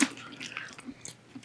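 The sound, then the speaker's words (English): Wet chewing of flavored jelly beans, with flavors such as booger, toothpaste and birthday cake, with soft irregular smacks and squelches over a quiet background and no talking. “you gonna chew yourself?”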